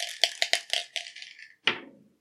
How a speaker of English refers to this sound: And what we will do, you will roll the 20-sided dice, but you get to roll this time. Woohoo! And whatever number it lands on, we will go through that question.